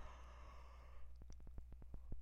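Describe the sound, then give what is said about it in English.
A person yawns, a drawn-out breathy exhale lasting about a second, followed by a quiet run of evenly spaced clicks. “Oh, sorry, guys, I yawned.”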